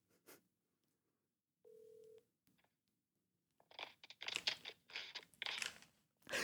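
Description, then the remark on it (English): A phone call being placed: one short electronic keypad tone, a brief pause, then several seconds of loud crinkling and handling noise. No one speaks. “You make the phone call.”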